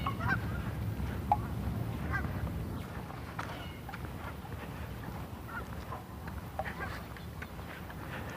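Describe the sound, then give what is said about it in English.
A flock of 8 or 10 birds coming in from the west flies over, sorting themselves into a line, giving scattered, repeated honking squawks, intermittent rather than continuous, above a steady low outdoor rumble. “8 or 10 of them. Sorting themselves into a line. Once they get sorted, they shut up. Just the occasional squawk.”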